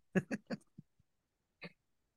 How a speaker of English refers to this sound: Okay, I didn't want to rip the packaging quite like that, but I'm going to take out Stretch Armstrong.